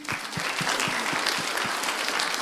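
An audience claps for a man who has just sung, in a steady, even rhythm, roughly four beats per second, loud and dense with many hands, over a continuous crowd hiss and no talking.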